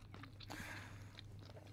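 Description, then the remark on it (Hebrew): A crisp crunch as someone bites into flaky bourekas pastry, followed by softer crackly chewing sounds, with a low steady hum in the background. “היה לך פריך? וואו, הבטחת לי פריך”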